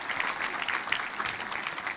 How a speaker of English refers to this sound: And I'd like to give them a round of applause for all their labor of love.